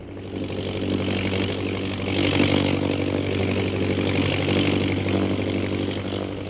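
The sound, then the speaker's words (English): A steady, droning engine of an airplane circling low hums continuously with a deep, buzzing low-pitched tone and a rough mid-range roar, holding a fairly even loudness throughout with no voices. “Hold the plane so that I can see that signal.”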